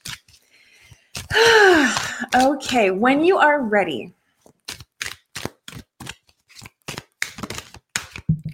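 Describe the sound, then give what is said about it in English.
A deck of cards being lightly shuffled, a run of short, crisp flicking bursts in an uneven rhythm. It follows a brief stretch of someone speaking. “Let me just do a little more light shuffling here.”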